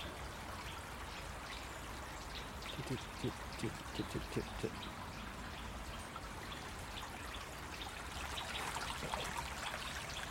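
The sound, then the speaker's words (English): Continuous trickling of a small stream on the Gower babbling over stones on its way to the sea, under wintry moss-covered trees in sunlight, steady, with a brief patch of sharper splashing ripples midway and a busier wash of water toward the end. “Enjoy a wild wander along a Gower stream to the sea”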